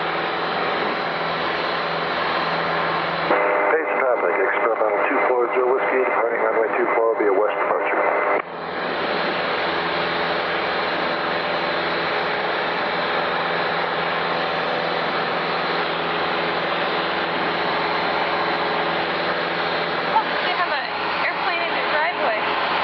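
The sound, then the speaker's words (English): A Piper Cherokee light aircraft engine drones loudly and steadily in flight just after departing Payson, a dense unbroken roar, while a tinny, radio-like voice cuts in briefly over it early on. “Payson traffic, Cherokee 044 is making a right crosswind for a right downwind departure to the east.”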